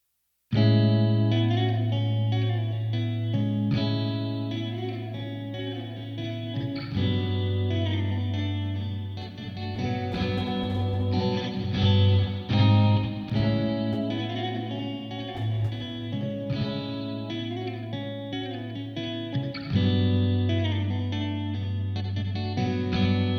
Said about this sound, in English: So check out the same part with just a stereo reverb.